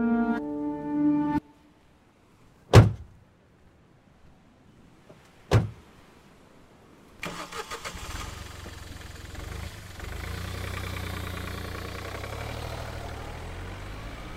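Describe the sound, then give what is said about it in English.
Two sharp car door thumps, then a car engine cranks to life and settles into a steady, rumbling idle as the car sets off back to a convent; a brief tonal chime opens the sequence, and no one speaks. “Soon, Mary was in the car, heading back to the convent.”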